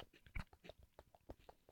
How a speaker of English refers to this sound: I'm eating Funyuns, by the way. Yeah. You hear crunching, my bad. Yeah, we were eating a lot.